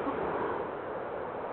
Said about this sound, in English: sorry, road traffic, road noise. Could you hear that part?